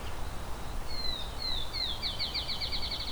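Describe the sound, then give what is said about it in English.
A field sparrow sings a clear series of sweet whistled notes that speed up into a rapid trill, with a Baltimore oriole also present, at the entrance of Beverly Swamp conservation area, over a low outdoor rumble with no talking. “Got a field sparrow here, a Baltimore Oriole here that weren't here when I got here.”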